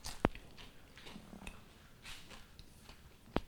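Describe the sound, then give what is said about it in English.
A crisp crunch of a bite into food, followed by quieter rustling chewing, then another sharp crunch near the end. No one speaks. “Oh, the crunch sounds good.”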